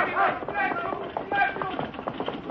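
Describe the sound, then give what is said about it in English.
Steady clip-clop of hooves from a horse-drawn buckboard wagon, a quick uneven patter running under overlapping voices of people talking throughout. “Not too fast for that buckboard”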